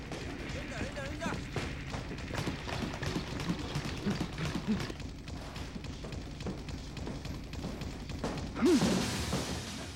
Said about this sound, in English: At this point, of course, Tsuda has become so good at working on the punching bag that we get this very rhythmic result, which is something that Tsukamoto really wanted to use in the movie.